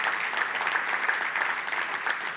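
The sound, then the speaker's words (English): A church audience applauds steadily for the operations team at a morning service, a dense wash of many hands clapping at once, sustained and fairly loud throughout without any voices standing out. “And will you join me in giving them a round of applause for doing?”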